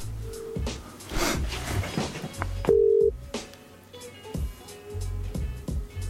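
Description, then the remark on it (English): Phone line sounds from an outgoing call: brief electronic tones and beeps over a low hum, broken up by sharp clicks and rustling. No one speaks. “Answer your phone then, you idiot.”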